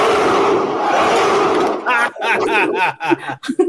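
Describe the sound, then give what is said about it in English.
A crowd-cheering sound effect played from a soundboard: a loud roar of a cheering crowd for nearly two seconds, a dense wash of many voices, then cuts off into a few separate excited voices shouting and talking. “You don't have applause on your soundboard? I have this.”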